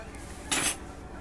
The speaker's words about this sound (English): Oh, here, give me that fork bag. Yeah. Plastic forks. Mm-hmm. Because I don't want to do dishes.